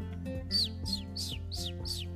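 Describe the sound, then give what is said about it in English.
A small pet bird named Chirp, hopping along a tree branch, chirps five times in a quick, evenly spaced series, each note a bright downward-sweeping tweet, over a faint steady low hum. “Chirp hopped along the branch back towards Watson.”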